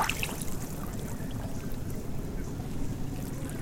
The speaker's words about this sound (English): It's a very clear, hot day, so there isn't much wind or waves or anything like that. We can hear the chugging of the engine and we're just chatting away happily.